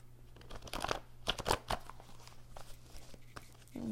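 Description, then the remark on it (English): A deck of cards is shuffled, a quick series of crisp riffling and flicking bursts with a faint low hum underneath and no talking. “Different deck. One more shuffle.”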